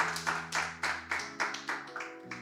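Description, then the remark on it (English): Steady, rhythmic clapping of a crowd, about nine sharp claps in even succession, moderately loud over a sustained low musical hum; a round of applause given for the Thursday night word on vision. “Let's just give a round of applause for the word on Thursday, that Thursday night word from”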